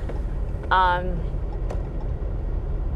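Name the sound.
car interior noise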